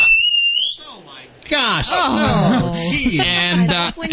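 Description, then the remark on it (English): A single sharp, shrill air horn blast in a studio with animals, used to startle rather than scare, lasting under a second, loud and piercing, followed after a short pause by people exclaiming and talking. “You can also use air horn just like this.”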